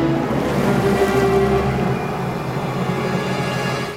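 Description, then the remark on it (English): Ocean waves wash steadily against the shore in a continuous, fairly loud roar with a deep low rumble, and no voices are heard. “Now he's just walking out towards the sea.”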